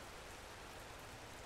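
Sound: rain falling outdoors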